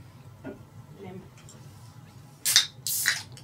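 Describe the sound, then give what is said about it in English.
Dr Pepper and Sprite sodas, including H-E-B store-brand, poured into cups: two short bursts of bright, fizzy hissing, one right after the other, following a stretch of low steady hum with faint murmuring voices. “Alright, let's pour them.”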